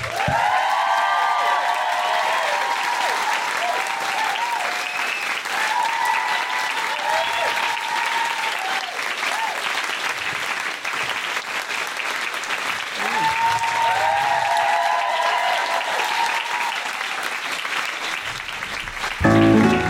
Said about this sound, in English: Can we have a please have a big round of applause for our very special guests